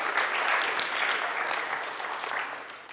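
A crowd applauds steadily for about three seconds, a dense, even wash of many hands clapping at once with no voices standing out above it.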